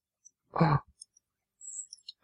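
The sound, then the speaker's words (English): Ice clinks in a glass of iced tea: a short, muffled swishing thump, then a few faint, bright high-pitched ticks and a brief ringing ping, with no talking. “You can't have a a glass with ice in it, Paul. Yeah, when you're we're hearing the iced tea.”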